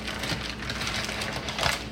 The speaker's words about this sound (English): So now we gotta unwrap it. They're in some paper here, so we unwrap this.